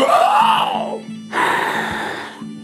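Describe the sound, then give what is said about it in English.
A voice acts out a loud, dramatic gasp: a strained, groaning intake of breath followed by a second long, rushing breathy burst, with no other talk. “And he gasps.”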